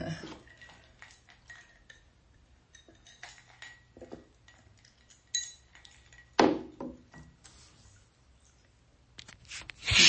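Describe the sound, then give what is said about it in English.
Quiet handling of a drinking glass while someone takes a sip of water: soft scattered clinks and taps, then a couple of sharper bright glassy knocks near the end, with faint rustling in between and no talking. “All right, one more sip of water.”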